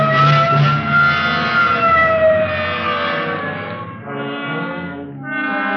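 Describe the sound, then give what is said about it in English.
A police car siren wails loudly, its rising and falling tone sweeping continuously over a low rumble of engine and road noise, with no voices, as the car responds to a Code 3 shooting call near Washington and Figueroa. “Okay, hit the siren. Let's move.”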